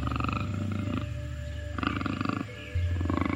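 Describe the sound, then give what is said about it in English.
A panther roars in deep, rumbling bursts, with low growling tones that swell and fade across a few seconds and end in a louder surge. No one speaks. “You are a panther.”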